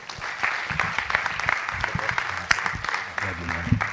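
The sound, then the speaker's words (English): An audience applauds steadily for a minister who helps pastor churches across the United States, a dense wash of many hands clapping with scattered sharper claps and some vocal murmurs mixed in throughout. “And so if you would, please today, give him a round of applause, because this is a man of God who's labored tirelessly throughout the world.”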